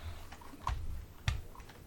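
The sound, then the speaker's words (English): A few sharp computer keyboard clacks, typed hard and unevenly into a microphone, with two especially loud thumps standing out over a low background hum. No one speaks. “That always drives me nuts when I listen back and I hear the typing, but now I just typed really loud into my mic, so I can't judge him for it.”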